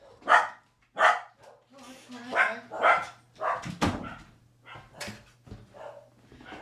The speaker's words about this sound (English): My dogs are barking quite ferociously. I'm just going to open the door and let a dog out.